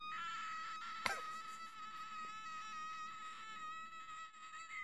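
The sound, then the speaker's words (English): A woman in a played video screams in one long, high-pitched, steady note held for about five seconds, loud and unbroken, with a brief sharp knock near the start and no talking. “Is that her screaming or is that a goose? That's her.”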